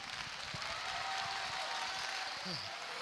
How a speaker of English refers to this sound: Well, clap anyway.